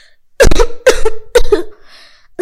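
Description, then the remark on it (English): A series of loud, harsh coughs from people after an explosion in a Japanese-style house, three in quick succession at a steady rhythm, then a short pause before another cough begins at the very end. “Everyone was coughing.”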